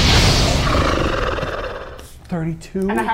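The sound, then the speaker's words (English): A voice imitates a beholder monster's horrible scream after it is struck directly in its main eye: a loud, harsh, rasping roar that fades over two seconds, followed by two short, strained, higher-pitched vocal cries. “It lets out this horrible scream.”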